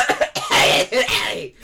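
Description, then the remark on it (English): A voice imitates a cough while forcing out the words "Diagon Alley", a short raspy burst followed by a longer strained, hacking exhalation, fairly loud. “We didn't need a demonstration, but thank you.”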